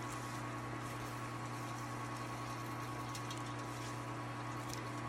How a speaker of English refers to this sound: So we just open up this valve. Hot water starts coming in.